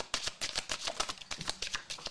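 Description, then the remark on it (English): A deck of cards being shuffled, a rapid run of crisp papery flutters and snaps riffling steadily for a couple of seconds with no voices. “Y'all can let us know in the comments if y'all feel like shuffling is cool.”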